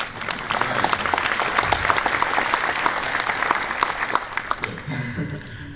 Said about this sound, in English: … wrote the music for about 15 songs. Some applause for ….